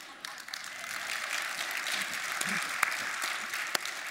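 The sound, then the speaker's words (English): A crowd applauding steadily, a dense wash of many hands clapping, sustained throughout with a few sharper individual claps standing out. “You can't clap just patting one hand on your leg.”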